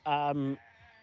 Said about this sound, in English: You must be able to hear these goats. It's insane. Some of them genuinely sound like people doing impressions of goats.